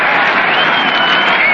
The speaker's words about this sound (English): Pitch to Red is in there. A called strike. Belt high. It dropped forth a roar from the crowd.